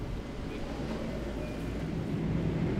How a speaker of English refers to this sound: So get a nice little relaxing, quiet time on the train. At least I don't have to physically drive there the whole time.